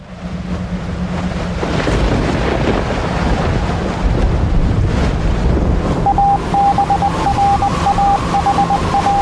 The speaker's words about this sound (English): It's windy out there.